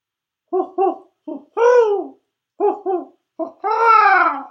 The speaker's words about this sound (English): I thought that was going to be a gentle owl, but it sounded like its feathers got ruffled there at the end.